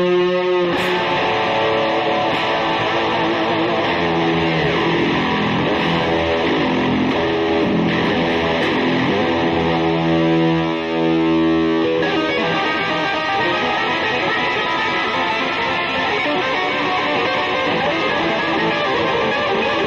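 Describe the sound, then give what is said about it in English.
A distorted electric guitar plays loud, sustained, buzzy chords without pause, with the texture shifting partway through as new notes ring out; no one speaks. “Oh, there's a distortion.”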